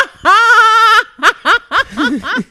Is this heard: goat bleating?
yes